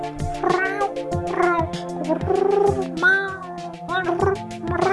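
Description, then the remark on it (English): A cat meows repeatedly in drawn-out, wavering cries, fairly loud, with several yowls following one another over a few seconds and no talking. “Our meat curtains taste delicious. Just ask this cat right here.”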